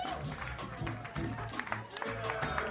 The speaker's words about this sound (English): This is unbelievable, ladies and gentlemen. The crowd is going wild.